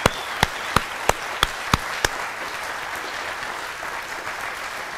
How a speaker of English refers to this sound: But why don't we just give them a nice round of applause for everything that they've done for us.